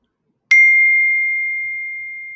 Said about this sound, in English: So yeah, as you guys can see or hear, my phone's going off. Someone needs my attention.